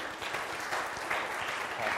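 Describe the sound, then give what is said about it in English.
Steady applause from an audience for people receiving certificates and Bibles, a dense wash of many hands clapping at a constant, fairly moderate level with no pauses and no voices standing out. “We can give them a round of applause, guys.”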